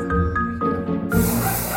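A loud burst of aerosol hairspray, sprayed onto a miniature poodle's coat for a spray-up at a dog show, hisses steadily from partway through and continues to the end, preceded by a short stretch of low tonal hum.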